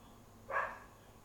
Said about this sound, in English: Oh my gosh, why does the dog want to bark while I'm recording?